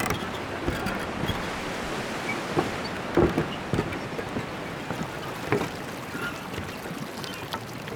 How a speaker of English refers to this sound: The river is named after the deity, Jomo. It's a local deity, and she's the main deity for this part of Bhutan. And this is her river that we're walking along, and that goes all the way from Shinkalauri and eventually to India.